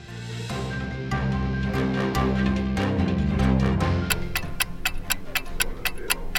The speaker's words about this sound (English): Oh yes, that ticking you hear is our countdown. We are only 7 days away from Election Day 2020.